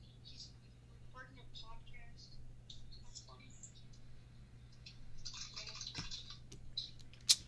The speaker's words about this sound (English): We don't need more like key clicking, so.